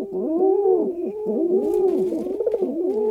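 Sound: pigeon cooing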